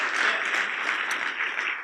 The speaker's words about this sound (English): Take a minute and clap your hands one time.